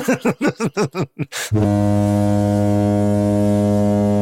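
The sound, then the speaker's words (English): A quick burst of short, bouncy tones gives way to a long, loud, steady horn blast that holds on without a break until the end, like a blaring foghorn-style honk. “Honk that out.”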